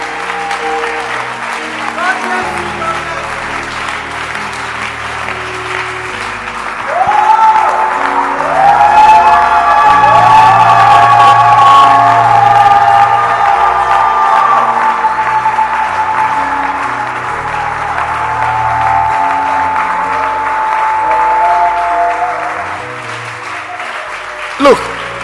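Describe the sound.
A church audience stands and claps and cheers for their pastor for about twenty-five seconds, the dense applause swelling louder after several seconds, with high whoops and shouting voices rising over the steady clapping.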